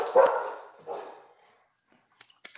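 A dog barks twice, a loud full bark followed by a slightly softer one, then a few faint clicks in otherwise quiet surroundings.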